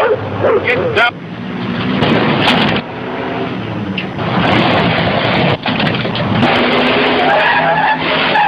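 A loud, frantic car chase: tires screech and skid repeatedly over roaring engines, the noise dense and unbroken for the whole stretch, with brief lulls between bursts.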